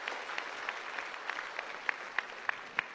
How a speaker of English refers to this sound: Give Jesus a mighty clap offering and give big thanksgiving to the Lord.